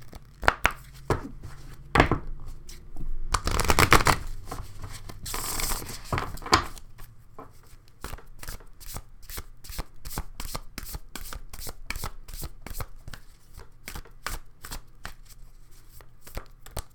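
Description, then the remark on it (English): A deck of cards being shuffled for a card reading: a dense riffling burst early on, then a long run of quick, crisp, evenly spaced card snaps and flicks, with no talking. “So let's go ahead and get some cards read. Okay. Do a little shuffled in.”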